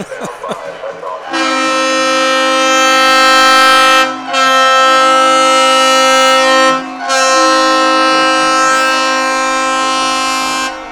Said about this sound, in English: Well, the train horn person didn't get the memo.